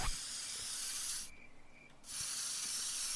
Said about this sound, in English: The spray can!